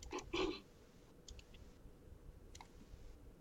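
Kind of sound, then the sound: household object, many dice being rolled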